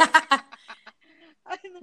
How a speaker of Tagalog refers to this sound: Babaan mo yung volume ng aso nyo. So, pakihinaan naman.